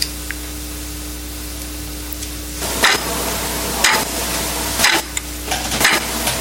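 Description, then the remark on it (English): A clock ticks steadily, about once per second, with four sharp, crisp clicks over a constant low hum and hiss. The ticking begins after a few seconds of quiet background noise. “What's that? Clock, yeah.”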